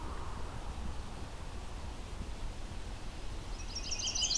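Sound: chestnut-sided warbler song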